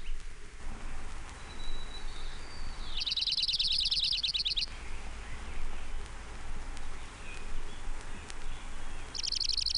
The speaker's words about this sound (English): Orange Crowned Warbler, 1.